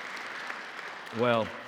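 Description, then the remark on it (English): An audience claps together in a dense, steady wash of applause as a hand clap of praise, and near the end a single voice rings out briefly in a pitched cry over the clapping. “Can we give a hand clap of praise for that?”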